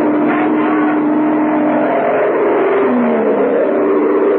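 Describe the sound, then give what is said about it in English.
An airplane engine roars loudly and steadily as the plane climbs back into the sky after a failed approach at Tempelhof, heading back for Wiesbaden, 300 miles away; a dense droning rumble with a humming tone that bends slightly in pitch partway through. No voices. “Why, the pilot took his plane back into the sky after the approach failed and headed back for Wiesbaden, 300 miles away in the American zone.”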